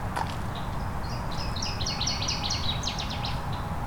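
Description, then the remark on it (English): A northern waterthrush sings a bright, rapid series of sharp chirping notes that accelerate into a tumbling flourish, ringing clearly above a steady low rumble of outdoor background noise. “I don't see the water thrush, but that was very clear.”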